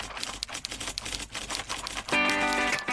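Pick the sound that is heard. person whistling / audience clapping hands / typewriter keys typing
typewriter keys typing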